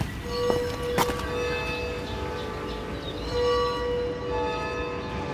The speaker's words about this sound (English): You can hear the distant church bells of Florence's many towering cathedrals.